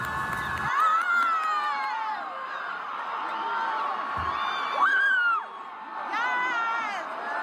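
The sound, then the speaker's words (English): A group of people, a runner's team, cheering and shouting encouragement during a race as the runner nears the final lap, overlapping voices with rising and falling whoops, loud and continuous for several seconds, with one sharp high whoop standing out midway. “Your team is also depending on you, cheering you on.”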